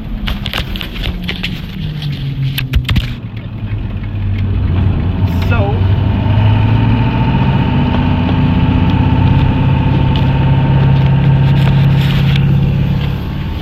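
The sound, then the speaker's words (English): A car engine runs and hums steadily with a low, droning rumble while the car is being driven, preceded by a few sharp clicks and thumps of a phone being dropped. “I actually dropped my phone while I was driving, doing my podcast.”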